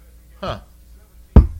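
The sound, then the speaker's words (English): A brief vocal sound, then two sharp, hollow thuds close together, someone knocking on a door of a studio, fairly loud against otherwise quiet surroundings. “can you get the door? No one's knocked in the studio.”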